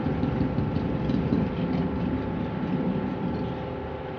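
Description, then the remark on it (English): Boat engines idle in a steady, continuous low rumble with a droning hum, unbroken and fairly loud throughout, with no voices over it. “Switch off your engines.”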